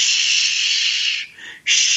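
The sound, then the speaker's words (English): A voice makes a long, loud, steady "shhh" like white noise, as done to soothe a baby, breaks off briefly with a softer gap, then starts a second strong shush. The hiss is bright and airy with no other talking. “And then shush it, like make white noise in its ear, like even to the loudness of a vacuum cleaner, right?”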